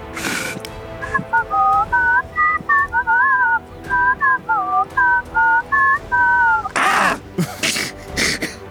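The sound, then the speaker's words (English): A person whistles a short, bouncy tune of many quick rising and falling notes, fairly loud, followed by a few breathy bursts of noise at the end. “Oh gosh, why can I not whistle on command?”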